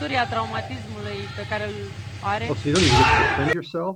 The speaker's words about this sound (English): Is that just crazy? They literally are slapping each other, taking turns, slapping each other.